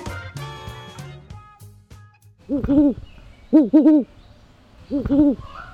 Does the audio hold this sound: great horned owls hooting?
yes